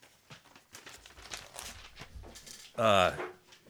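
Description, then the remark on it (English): Sheets of paper rustle and shuffle softly in a series of quick crinkles as people pass their papers to the person on their left, with low murmuring and a brief loud vocal outburst near the end. “So everyone just, you know, hand your paper to the person to your left.”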